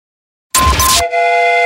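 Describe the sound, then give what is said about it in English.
A train sound effect used as a segment jingle on the radio station Alice 105.9: a brief loud burst of hissing, rumbling steam gives way to a steady, multi-toned train whistle that holds to the end. No one speaks. “You've just bought a ticket on Jamie's Train of Thought.”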